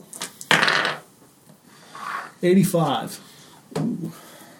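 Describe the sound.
A d100 die clatters and rattles across a hard surface in a short burst, followed by a brief voiced murmur and another quick clack as it settles.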